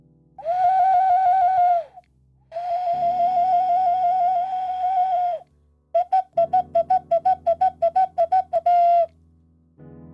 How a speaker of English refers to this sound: Here's the ocarina. Little Spanish clay whistle.